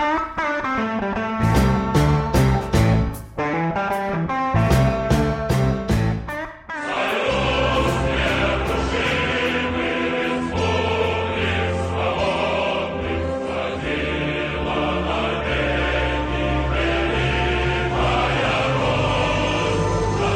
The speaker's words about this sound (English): Those, of course, dear listeners, were the dulcet tones of the Russian national anthem, formerly known as the Soviet national anthem,